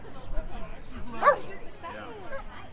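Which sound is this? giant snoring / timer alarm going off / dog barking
dog barking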